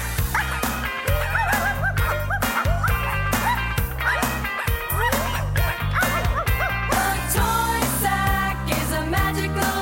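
Puppies in a sack bark and yip in quick, repeated bursts over a loud, full band playing steadily underneath, the yelps rising and falling in pitch throughout.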